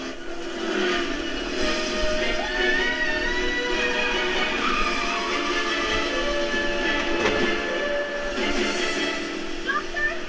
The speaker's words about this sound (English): What happened to a train yard? That's so bizarre.